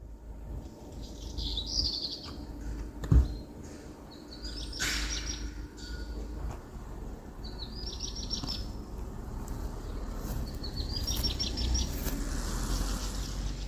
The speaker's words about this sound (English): I'd never heard it, and I'm so familiar with most of Britain's birds. And I did catch a glimpse of it, and it was a bit red-starty in looks, so that's kind of darkish above and red tail. And I reckon that's a black red start.